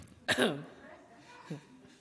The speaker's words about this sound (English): This is my designated coughing area. Sorry.